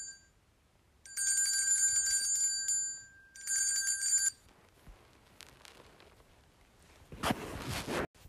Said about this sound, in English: The bell rang, which meant it was home time.